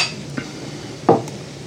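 Glasses clink together in a toast, a light tap followed by a louder, fuller clink about a second later, with no voices over a quiet background.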